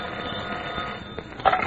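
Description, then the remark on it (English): A telephone at a local FBI field office starts ringing near the end, a bright buzzing ring that breaks in suddenly over a steady background hiss. No one is speaking. “Special Agent Jim Taylor is studying a later report from the Cleveland field office about the stolen car gang when the telephone rings.”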